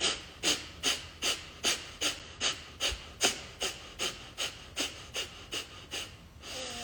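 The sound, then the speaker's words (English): A steady series of about fourteen quick, forceful nasal exhalations, each a short breathy hiss, repeated at an even brisk rhythm with no talking, demonstrating a pumping breathing practice used to create internal heat. “So I'm going to take a breath in, and then I'll pump it.”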